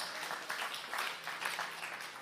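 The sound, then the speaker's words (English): A crowd applauds steadily, many hands clapping together in a dense, continuous patter with slight swells in intensity throughout, and no voices standing out over it. “And maybe just be careful with your driving, because that's bigger than what you clapped.”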